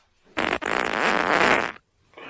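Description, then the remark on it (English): A loud fart lasting over a second, starting with a brief burst, pausing, then a sustained raspy, flapping blast that cuts off abruptly, followed by a short quieter noise. “Farts lead to great discussion.”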